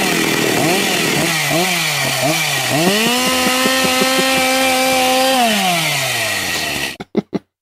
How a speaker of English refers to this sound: If I can get this thing on. Pull harder. A little harder. All right. One more. Yes. Oh, there it is. Coming for you, Colin. Like a chainsaw.